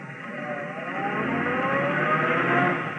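A car engine runs steadily as the car drives along behind a taxi, a continuous, fairly loud rumble and road noise with faint whining tones, holding even for the whole stretch with no voices.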